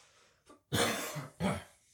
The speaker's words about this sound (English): I'm turning away from the microphone to cough. I'm pretty sure the microphone's still picking up.